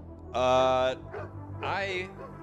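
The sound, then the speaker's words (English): A person imitates a dog barking: two loud, drawn-out, howling woofs separated by a short pause. “Woof, woof, woof, woof, woof, woof.”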